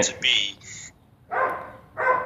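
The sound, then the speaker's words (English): A puppy barks in a handful of short, high-pitched yaps, a quick cluster at first and then two more separated by brief pauses. “The puppies out.”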